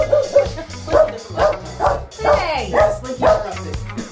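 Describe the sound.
A dog barks in a rapid, steady series of about eight sharp, yappy barks, fairly loud, with faint indistinct voices in the background.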